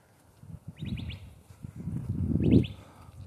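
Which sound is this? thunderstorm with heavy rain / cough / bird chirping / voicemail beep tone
bird chirping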